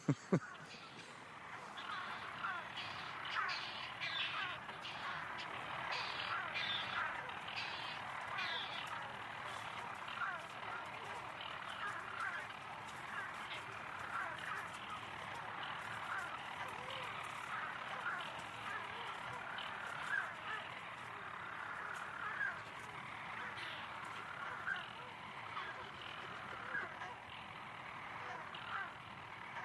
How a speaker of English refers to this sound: I think we're now hearing another bird coming in as well, because we're in the kind of half-light we heard quite definitely predominantly petrels, but now there's another call.